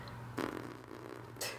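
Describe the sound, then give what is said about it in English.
Two close, buzzy fart noises blown with the mouth, a longer sputtering one followed by a short burst, over a steady low background hum. “I'm just kind of making fart noises.”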